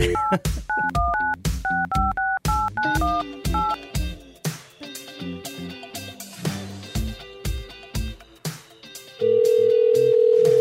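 Rapid sequence of dual-tone keypad beeps as a phone number is dialed, giving way to rhythmic electronic tones and ending on a long, steady held tone. No voices.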